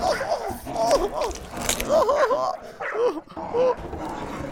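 Rabid dogs bark and yelp in a rapid string of short, high, rising-and-falling cries, overlapping one another above a rough, noisy background rumble, with a brief lull before the barking resumes.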